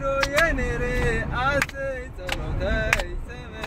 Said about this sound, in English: This is him singing one of his home nation's songs to lighten the journey.